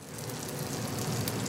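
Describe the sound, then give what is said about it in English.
A steady, crackling sizzle as a chef in a kitchen flips a yellow square chunk of cornbread, made with 8-row cornmeal, frying in melted butter in a pan; a dense hiss of tiny pops that holds even throughout, with no voices. “Chef Michael Morway flips a yellow square-shaped chunk of cornbread in a pan sizzling with melted butter.”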